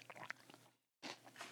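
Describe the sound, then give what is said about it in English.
Crisp crunching of stale dry cereal being chewed, a run of small brittle bites, a brief pause, then another dense burst of crunching. “I'm sure people are listening with their headphones, and all they hear is crunching.”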